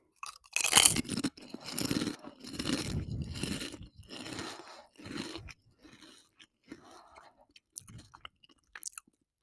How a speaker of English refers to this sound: Let's eat some chips. These are Taki kettle chips. So it's like a kettle, you know, like potato chip. It's not like the actual rolled up tortilla one.